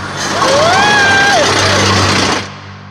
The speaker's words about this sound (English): It's a bus. Hey! Hey, wait for me! Stop! Stop!